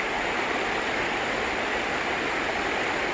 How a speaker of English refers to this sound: The river flowing wild and free.